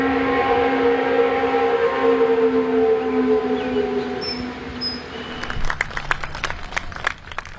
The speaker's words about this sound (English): In the mountain town of Canton, North Carolina, a historically sad day had something of a happy ending. On May 25th, the noon whistle at the Canton paper mill blew for the final time after 115 years.